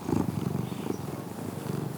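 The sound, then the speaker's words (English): A cat purrs steadily, a low rumbling vibration with a quick, even pulsing rhythm that carries on without a break, moderately loud and with no voices over it. “Oh, cat, you're putting your tail in my coffee.”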